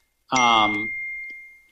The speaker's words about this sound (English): You're chiming on us. I am chiming.